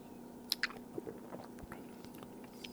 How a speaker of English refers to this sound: Barely any aroma of hops, and they're very earthy, what I smell. That's probably the Palisade hop I put in towards the end. Let me take one more sip here.